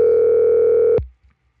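A steady, buzzing telephone tone as a call is placed to a caller, holding loud and unbroken for about a second, then cutting off abruptly with a click as the call connects. No voices are heard.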